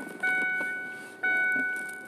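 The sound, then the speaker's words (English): A car's seatbelt reminder chime rings twice, exactly a second apart, each a bright, bell-like electronic tone that fades slowly, over a faint low hum. “That's her telling me to buckle up.”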